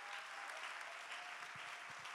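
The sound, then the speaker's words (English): Sustained applause from a church audience recognizing standing members who were in the building on First and David, a dense, steady wash of many hands clapping at once, fairly loud and even throughout with no voices standing out. “I think these folks deserve a hand clap of recognition.”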